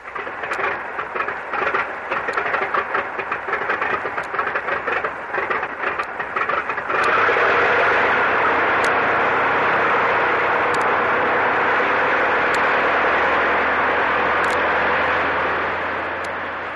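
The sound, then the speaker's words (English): An airplane engine drones loudly as the plane flies over the area where a storm struck the Manila Merchant, with a rough, pulsing sputter for the first several seconds before settling into a steady, continuous roar that holds to the end. No one speaks. “According to the chart, Tony, we've been flying over the area where the storm struck the Manila Merchant.”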